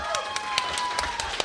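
An audience applauds with sharp, rhythmic claps at a quick steady pace, over a constant background of sustained tones and murmuring, as a guest is invited up on a show.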